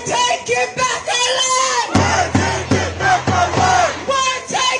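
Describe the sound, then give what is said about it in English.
A large crowd of pro-Palestinian protesters on the streets of Chicago chants and yells in loud, rhythmic bursts, many voices rising and falling together in repeated shouted phrases that fill the whole clip. “Those are pro-Palestinian protesters on the streets of Chicago.”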